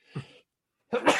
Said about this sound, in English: I'm about to sneeze.